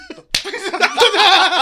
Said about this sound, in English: Assaulted a chef in Spain. Oh, it was a chef. Okay, my bad. To the chef, please? Just punches him in the face.